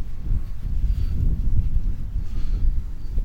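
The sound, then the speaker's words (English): Strong wind buffets the microphone outdoors on a floodplain in Brampton, a steady low rumbling roar with gusty surges that fills the whole stretch, loud, with no voices. “But it's very windy.”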